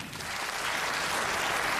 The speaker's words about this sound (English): Clap if you knew your person 5 years or less. Okay? Clap if it was 3 years or less.